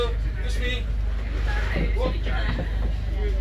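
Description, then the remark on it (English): A steady, loud engine rumble drones throughout from a fast boat cruising at speed to the Gili Islands, with indistinct chatter from people mixed over the constant hum. “So I'm on a fast boat to the Gili Island.”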